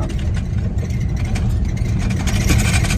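Steady low rumble of the engines of two different kinds of drags and a water truck working on a race track, a continuous droning mix of idling and working motors with slight surges, loud, with no voices.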